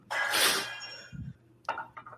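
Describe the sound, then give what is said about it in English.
Dirty dishes clink and clatter: a loud crash that rings out briefly, a dull low knock, then a few lighter clinks in quick succession. No one speaks. “There's a dirty dish that needs cleaning.”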